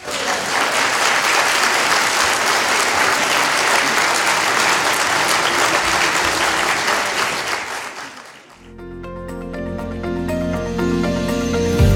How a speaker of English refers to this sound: These applause are for you.